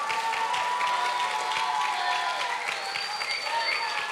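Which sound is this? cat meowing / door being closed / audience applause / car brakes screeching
audience applause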